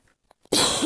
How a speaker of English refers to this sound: Sorry, you guys, I've already stopped this, like, to have a coughing fit, and it's just, it's gonna stay in there, so.